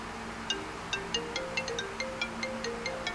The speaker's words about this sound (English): What is that? What phone is ringing? No. Just see these phones. Now some phone is ringing. There are, I think, 20 instruments around over here. Don't know which one is ringing.